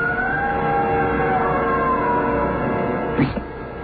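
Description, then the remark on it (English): A long, wailing scream with a high, slowly falling pitch, held for several seconds over a low steady rumble, ending with a short sharp burst of noise. “Did you hear that, Captain? Yes. Someone screamed.”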